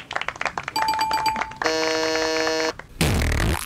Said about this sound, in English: Damn, that fart always gets me.